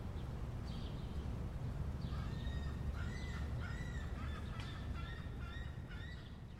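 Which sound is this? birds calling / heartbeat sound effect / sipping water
birds calling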